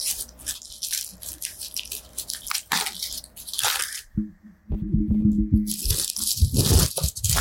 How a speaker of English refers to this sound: ASMR unboxing of a chicken taco from QT. Okay, everyone else be quiet. I need to figure out how to open this.